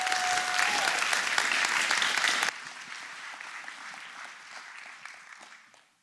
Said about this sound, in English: So would you give a big round of applause and welcome